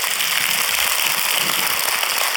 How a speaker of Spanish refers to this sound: Mire, mi hermano, den un aplauso a Dios por ello.